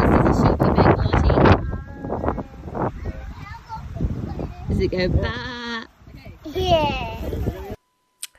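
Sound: sheep bleating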